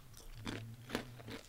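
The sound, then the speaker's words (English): Crisp crunching of spicy, chicken-flavored snacks being chewed a few at a time, with several sharp bites breaking through a steady low hum, no talking. “Eat three at a time. Okay. You have to eat a couple at a time.”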